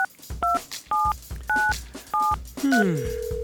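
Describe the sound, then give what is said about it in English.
A person redials a phone number: a quick series of about six telephone keypad dialing tones, each a short two-note beep, closely spaced and clear, followed by a brief electronic connecting tone. “But I'm just gonna call that number again to see if I can.”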